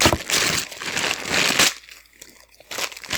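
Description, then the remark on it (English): Wrapping paper being torn open: loud, crackling rustles and crinkles for over a second, a brief lull, then another burst of papery crunching. No one speaks. “Sound of wrapping paper.”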